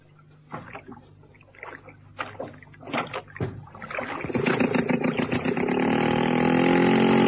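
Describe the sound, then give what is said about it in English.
A rowboat on a lake in the late afternoon at the Merry Lake Pleasure Resort: a few hollow wooden knocks and clunks, then a steady, building swish of water and creaking as the boat gets under way, without talk. “Outside and into the boat.”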